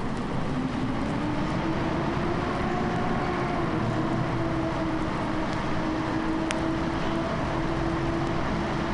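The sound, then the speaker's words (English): The motors of the Cannonball Special train are started and rumble steadily with a droning hum and faint mechanical whine, loud, holding a constant level for the whole stretch without any voices. “You start the train motors.”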